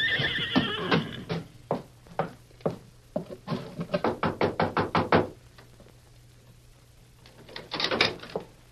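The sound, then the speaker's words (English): Hooves of a ridden horse clip-clop in uneven strikes that quicken into a brisk run, with a horse whinnying at the start and a breathy snort near the end. Fairly loud, no talking. “Now, you ride ahead and ask if we can water our horses.”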